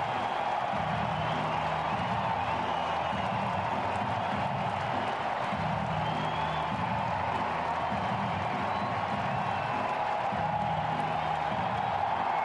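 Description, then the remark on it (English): A baseball stadium crowd in Seattle gives a standing ovation, everyone on their feet, as Ken Griffey Jr. returns in a Seattle Mariners uniform and tips his helmet to the crowd: a dense, steady roar of cheering and applause that holds at an even level for about twelve seconds, with no single voice standing out. “takes off his helmet, tips it to the crowd, standing ovation, everyone on their feet.”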